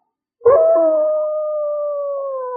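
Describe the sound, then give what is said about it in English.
A person imitates a wolf howl: one long, steady, mournful note that starts abruptly, holds fairly loud for about two seconds, and sags slightly in pitch toward the end. “He said, once or twice a year, the wolves shall come out.”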